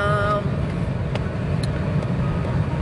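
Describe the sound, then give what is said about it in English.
Steady low rumble of a car driving along the road from one little town to another, a continuous engine and tire drone heard from inside the vehicle, with a few faint clicks and a brief tonal hum at the start. “Anyhow, we are driving today. We're going from one little town to another town.”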